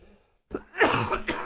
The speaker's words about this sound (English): Now, I'm about to have a coughing fit.